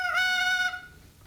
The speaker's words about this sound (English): That was a mama doll. Oh. Mama. Okay. I guess it would sound more like mama if you saw the doll there with the blinking eyes.